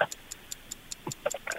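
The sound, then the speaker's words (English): A 10-second countdown clock timer ticks in a crisp, steady rhythm, about five ticks per second, with brief bits of a voice breaking in near the end. “10 seconds on the clock.”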